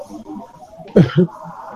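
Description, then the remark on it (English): Two quick coughs in rapid succession, the first sharper and louder, rising out of a quiet low background murmur; a person coughing after a swallowed piece of ice went down the wrong way. “You know, like earlier just now, I had swallowed a piece of ice. You know, I'm eating ice, and then I started coughing because it went down the wrong.”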